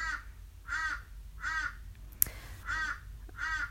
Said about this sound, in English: Yeah, and sounds like the crow's got some things to say about that. It's like, hey, get off the phone. You've got food coming. Ah, thank you, Mr. or Ms. Crow.